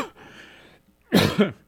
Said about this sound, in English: And, of course, I don't start to cough until I come back on the air.